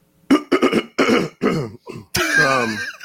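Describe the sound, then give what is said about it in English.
A series of loud throat clearings and short coughs in quick bursts, ending with a longer rasping, gravelly clear of the throat. No speech. “The throat also, clear says it all.”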